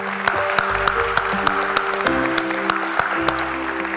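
An audience gives God a hand clap of praise in a steady, dense wash of clapping, with a few sharper claps standing out, while sustained keyboard chords hold underneath.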